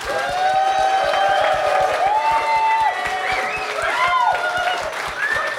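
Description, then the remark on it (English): A crowd applauds loudly and steadily for several seconds for two guests of a show, dense clapping mixed with whoops and cheering voices rising and falling over it. “Can we just have a huge round of applause”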